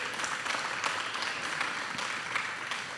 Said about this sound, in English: The production and worship team are just amazing. Would you give them another round of applause this morning?